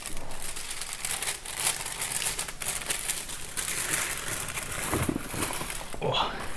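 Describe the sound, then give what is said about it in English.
Crisp, continuous crinkling and tearing of baking paper being torn off to line a baking tray, with dense papery rustles and a few sharper rips throughout, and faint sounds of someone moving near the end. “I'm gonna get some baking paper here.”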